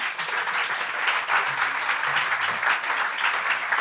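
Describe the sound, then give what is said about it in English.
Steady, dense applause from an audience for a panel before a 10-minute break, many hands clapping at once in a continuous wash of bright, crackling sound that holds at an even loudness throughout, with no voices over it. “Please, a round of applause for all our panel.”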